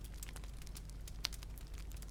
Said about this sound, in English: As each foot crunches down into the evenly placed snow, you are mindful of your steps forward in the moments before going to sleep.